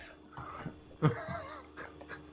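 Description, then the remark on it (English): A person's voice mimics a goose, giving a loud, nasal honk near the middle, surrounded by a few shorter squawky vocal bursts, with no other sounds. “That was more like a goose.”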